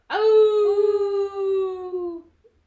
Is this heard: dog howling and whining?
yes